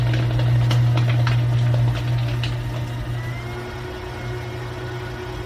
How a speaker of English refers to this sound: And there's that little fan again. So the fan runs.